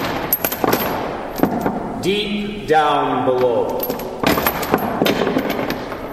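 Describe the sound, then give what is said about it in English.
Repeated metallic clanking and rattling, like a heavy chain being dragged, with a groaning tonal scrape in the middle. A voice speaks briefly over the loud, uneven clatter. “as if some person were dragging a heavy chain.”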